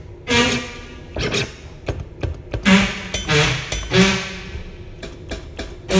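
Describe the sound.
A voice imitates a boat engine with buzzy, sputtering mouth noises: a low droning hum broken into irregular bursts and pops, fairly loud, with no speech.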